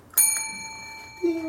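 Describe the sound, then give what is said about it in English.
A single muffled bell ring, struck once with a soft attack, its tone lingering and slowly fading; a brief low hum sounds near the end. “We've nuzzled the bell.”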